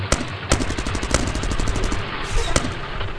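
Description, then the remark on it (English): Loud gunfire: sharp single shots punctuate rapid bursts of automatic fire that overlap and rattle on for about three seconds, like two sides trading shots. “Enemy fire!”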